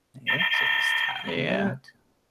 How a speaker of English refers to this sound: There's the alarm. You got to tap the screen to clear the alarm.